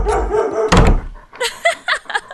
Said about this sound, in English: Training you to growl and bark at that dude was time well spent.